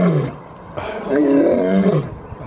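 A lion lets out one loud, drawn-out roar lasting about a second, rumbling and harmonic, with no one speaking over it.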